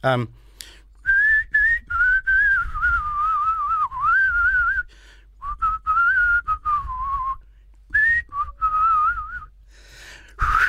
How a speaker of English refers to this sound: anyway, they do a whistling song.